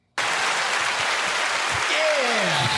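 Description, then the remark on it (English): A canned soundboard applause effect, played to celebrate a new official member, starts abruptly and holds as a loud, dense wash of clapping, with a high whistle sliding downward near the end. “Applause.”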